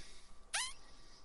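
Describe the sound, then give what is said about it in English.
A single short, high-pitched squeak with a quick upward-sweeping tone, made with a man's lips when he gets excited, stands out clearly against a quiet background with no talking. “It's not only you sniff, you squeak.”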